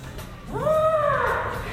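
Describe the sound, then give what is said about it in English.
A person with an arm raised as a trunk gives a single drawn-out trumpeting call in imitation of an elephant, a rising, wavering tone that holds steady and then bends downward before trailing off, fairly loud over a low background hum. “Well, that's an elephant we will never forget.”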